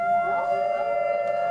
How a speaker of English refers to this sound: Hear his beautiful Arctic wolf howl, but he now likes to chit chat a little bit, so he doesn't want to stop there. He wants to howl a couple.